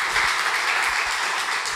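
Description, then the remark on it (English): An audience gives the Lord a hand clap of praise, sustained, dense applause, a steady wash of many hands with no single beats standing out, fairly loud throughout and with no voices on top. “Come on, give the Lord Dios. A hand clap of praise.”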